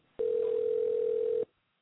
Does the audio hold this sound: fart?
no